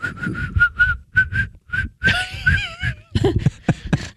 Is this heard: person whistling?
yes